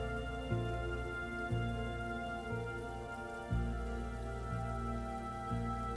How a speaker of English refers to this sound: In the distance, you see dark clouds closing in as the sky grows a little darker. You see that a small storm is forming and you feel some raindrops falling down.